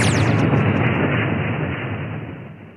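A plane crash sound effect in the Seagull Stinkeroo sting jingle: a brief high falling whine gives way to a loud, rumbling explosive roar that sustains and slowly fades over a few seconds, with no voices.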